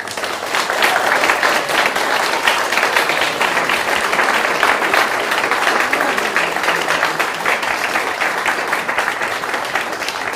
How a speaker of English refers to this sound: Can we just give another huge round of applause to all of the musicians tonight?